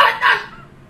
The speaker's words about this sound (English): Okay, and that's what happens. Fucking dogs.